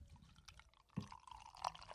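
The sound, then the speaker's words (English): Beer pouring into a glass, a steady liquid stream with bubbly splashes and a couple of brighter gurgling plops, quiet but clear with no one speaking. “Get that pour.”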